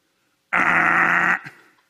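A single loud, harsh game show wrong-answer buzzer, like the one on Family Feud, sounds for under a second, a flat raspy tone that cuts off abruptly, with a brief faint tail afterward.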